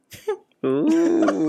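cough

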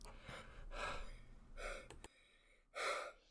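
heavy breathing

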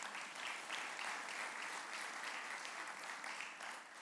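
applause

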